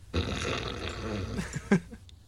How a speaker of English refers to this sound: Over here blowing his nose.